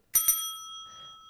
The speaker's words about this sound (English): Hello? Someone there? Oh, hey. Oh, it's a desk bell. A desk bell. Hey, desk bell. You got our attention.